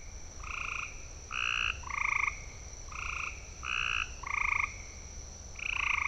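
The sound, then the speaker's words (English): A gray tree frog calls with short, musical trilled notes repeated in steady groups of three, clear over a low background hum, with no voices. “Let's listen one more time to the gray tree frog.”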